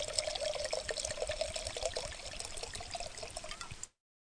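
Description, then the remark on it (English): Grand Cru wine pours steadily into a glass for about four seconds, a continuous splashing trickle that stops abruptly, with no voices over it. “All right, and nice pour.”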